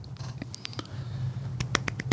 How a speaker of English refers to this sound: I'm clapping hands here for my husband. It's awesome.